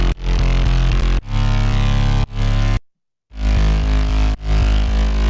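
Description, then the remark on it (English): Thick, buzzy layered super saw synth chords over a heavy bass, held notes changing roughly every second, with a short silent gap midway; loud and dense, no voices. “How To Layer Your Super Saws”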